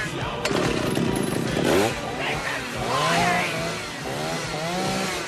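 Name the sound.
chainsaw engine revving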